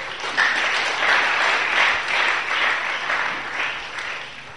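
A church audience claps steadily for the choir for several seconds, a dense, sustained patter of many hands with no voices over it, holding a fairly even loudness throughout.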